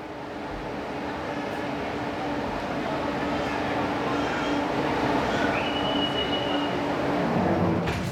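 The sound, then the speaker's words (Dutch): Steady rumble inside a moving train carriage heading toward Budapest, a continuous low rolling drone with faint rattles and a brief high squeal partway through, no voices, fairly loud and constant throughout. “In de trein richting Budapest denk ik na over de woorden van meneer Bella.”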